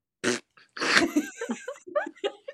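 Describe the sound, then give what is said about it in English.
A dog barks several times in quick, uneven succession: a short sharp bark, then a longer rough one followed by a string of brief yelping barks, fairly loud. “That dog better shut up.”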